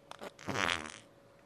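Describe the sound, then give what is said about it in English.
A few quick squishy crackles, then a brief wet, sputtering fart-like squelch from squeezed fart slime putty, fairly loud, fading out after about a second with no talking. “I don't feel like this slime is performing very well today.”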